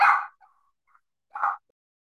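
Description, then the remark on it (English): An adolescent female dog barks twice, a sharp loud bark followed by a softer yelp-like one about a second later, with brief quiet between them and no talking. “Sorry, guys, I paused there because I'm pretty sure my dog is going through her teenage years.”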